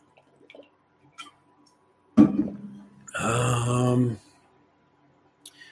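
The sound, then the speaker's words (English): Someone drinks water: a few faint sips and clicks, a louder swallow, then a drawn-out voiced exhale after the drink, with no speech. “I'm going to take a drink of water here.”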